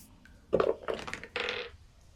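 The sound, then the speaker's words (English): A die, rolled in an attempt to knock down a door in a tabletop game, clatters across a hard tabletop in three quick, rattling bursts of tumbling before it settles, with no voices over it. “Crap die, stay on the thing.”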